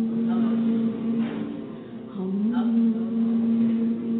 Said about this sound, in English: Okay? Everybody give me a hum. Hum.